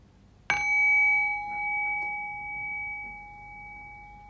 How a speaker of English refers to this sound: the bell.